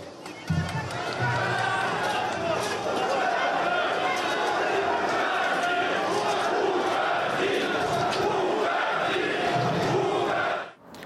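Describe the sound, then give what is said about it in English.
A large rally crowd shouts in unison, a loud, dense roar of many voices chanting "go away" (Russian "уходи") with a rhythmic pulse, sustained throughout before cutting off abruptly at the end. “And he finished his speech by saying that now I'm done, I'm leaving, and you can start shouting, go away, go away.”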